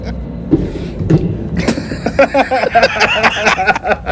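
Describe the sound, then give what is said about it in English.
A few sharp knocks against a table, then a phone clattering and rattling as it falls off the knocked table a second time, followed by a busy stretch of scraping and mechanical rattle. “And I wound up knocking the table and it fell a second time.”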